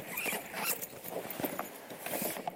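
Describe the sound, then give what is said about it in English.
A suitcase zipper rasps open in a steady, scratchy pull lasting a couple of seconds, with small uneven bursts along the way, fairly quiet, with no voices. “I just got to find the zipper now.”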